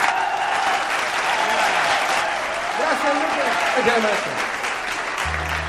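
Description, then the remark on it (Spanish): A crowd claps loudly and steadily for several seconds, a dense wash of applause that never lets up, with a voice or two calling out above the clapping, welcoming a norteño music singer onto a stage. “Vamos a recibir con un aplauso, pero bien machina,”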